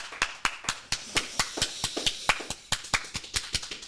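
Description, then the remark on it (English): A brief round of applause: crisp, sharp hand claps in a quick, slightly uneven rhythm, fairly loud and steady for a few seconds with no talking. “Great round of applause.”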